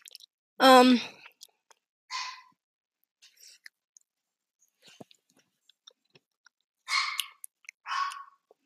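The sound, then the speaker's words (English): A dog named Max lets out a loud, high whine in the background, followed by a few sharp, scattered barks or yelps with quiet gaps and faint clicks between them. “I keep forgetting my thoughts because my dog is screaming in the background.”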